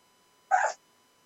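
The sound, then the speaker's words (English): A dog gives one short, sharp sneeze, a sudden burst of breathy noise lasting a fraction of a second, clear against a quiet background. “we got a dog over here sneezing.”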